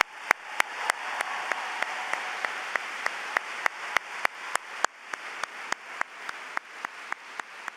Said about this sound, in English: So, ladies and gentlemen, a big round of applause for ….